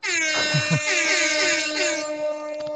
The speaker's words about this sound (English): I had to do the air horn one more time.